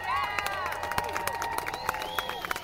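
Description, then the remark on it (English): Audience applause at a live show from Hungryland: a steady stream of sharp, overlapping claps that keeps going throughout, with high voices cheering and whooping on top of it and a host talking over it. “Look at me talking over the applause.”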